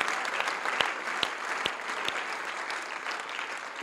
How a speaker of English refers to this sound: Let's give the Lord a clap, shall we?